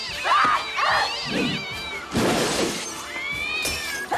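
A cat in Scary Movie 2 meows several times in drawn-out, wavering cries, with a harsh noisy burst midway that could be something crashing or the cat hissing.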